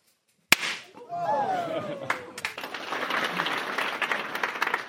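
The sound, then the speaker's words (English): A single sudden, sharp bang as a handful of gas-filled bubbles held in a hand is lit and explodes, quickly followed by excited whoops from a crowd and steady applause that continues to the end. “And now we're going to explode the mixture.”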